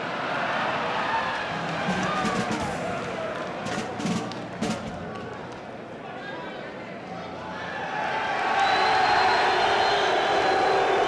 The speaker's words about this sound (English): You can hear how appreciative the inmates are at the prison after that performance